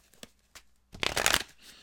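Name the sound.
tarot cards being shuffled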